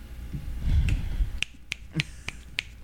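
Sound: finger snapping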